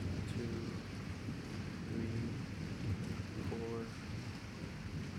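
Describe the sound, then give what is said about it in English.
Thunder from a storm about six miles away rumbles low and steady through a continuous wash of heavy rain, the deep roll sustained across the whole stretch with no clear breaks, with faint muffled tones drifting in now and then. “I'm saying that thunder is prompt.”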